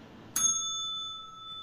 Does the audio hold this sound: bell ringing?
yes